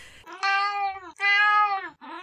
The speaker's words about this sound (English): Kipper, hey, that's Kipper. Hey, that's Kipper, the wonky cat.